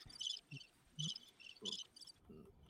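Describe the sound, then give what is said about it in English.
Crickets chirp in quick, evenly spaced bursts, a steady rhythmic trill repeating several times over a quiet background with no voices. “No. Quiet. Crickets.”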